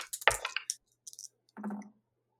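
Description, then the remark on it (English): Dice clatter and tumble across a hard table in a quick, rattling burst as two players each roll once, followed by a brief click and a second, softer roll, with no voices. “you roll once, I roll once, and we'll see what else we get.”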